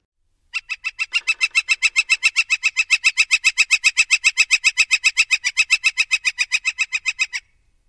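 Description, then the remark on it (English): A northern flicker's long rattle call: a rapid, steady series of about forty loud, evenly spaced piping notes lasting around seven seconds, clear with no other sounds. “So for comparison, here is the northern flicker rattle.”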